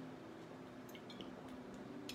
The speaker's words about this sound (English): Drinking from the water of justice and truth. Oh, geez, that's just leaving a huge water stain on my table. I'm going to need to get a coaster in the next reading.